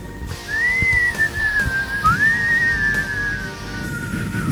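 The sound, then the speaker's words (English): A person whistles a short melodic tune, two smooth sustained phrases that rise and gently fall, clear over a low background rumble. “Well, got me whistling.”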